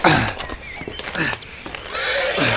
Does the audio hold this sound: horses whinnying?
yes